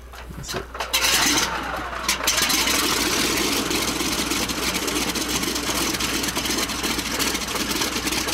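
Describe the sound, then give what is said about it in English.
A P-47 Thunderbolt's piston engine, the plane nicknamed the Jug, roars in a steady, rough drone that swells up after a brief quieter opening second, then holds loud and continuous with a gritty, throbbing texture to the end. “That's the Jug. Yeah, that's the P-47.”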